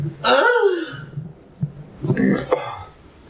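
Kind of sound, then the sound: human body sound, burp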